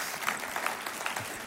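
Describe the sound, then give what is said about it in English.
An audience claps together in a dense, steady burst of applause, many hands blending into a continuous crackle at a moderate, even level with no voices. “You can commit to that clap.”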